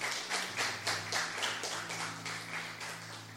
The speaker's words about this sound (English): Can we clap hands as you guys have a seat?